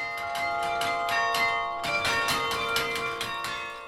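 Carillon bells in the attic belfry of an 1800s bell tower ring loudly, played by a woman striking big wooden dowels, with a quick, steady run of struck notes whose bright tones overlap and hum on between strikes. No voices are heard.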